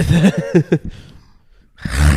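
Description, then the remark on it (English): A person makes a throaty vocal imitation of a big cat growling: a few rough pulsing bursts, a short pause, then a louder, deep rumbling snarl at the end. “That was a growl.”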